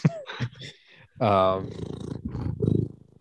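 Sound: cat purring loudly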